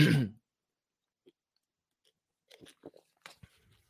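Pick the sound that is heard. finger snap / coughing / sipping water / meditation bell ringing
sipping water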